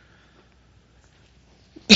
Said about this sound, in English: I have a bit of a cough today, sorry. Nobody else has one, right?